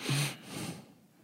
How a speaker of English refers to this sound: I said, it's my dad breathing again. You hear it?